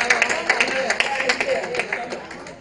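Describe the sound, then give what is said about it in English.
An audience claps for the visiting Ohio brethren in a steady, uneven patter of many hands, bright sharp claps overlapping throughout, with a murmur of voices underneath. “Now that the Ohio brethren are here, can we clap for them?”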